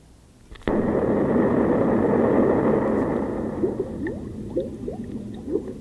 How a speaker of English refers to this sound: The bubbles? Yeah, it's bubbles. Why would they put that after an explosion? Are they threatening to turn us into bubbles? No. It sounds so much like rain, doesn't it?